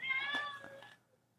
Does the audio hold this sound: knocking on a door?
no